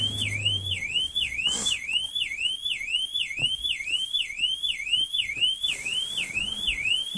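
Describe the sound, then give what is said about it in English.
A real car alarm wails close by, its siren sweeping up and down in a rapid, steady cycle of about two whoops per second, loud and unbroken throughout, with no voices. “I kid you not, that is a real car alarm going off beside me.”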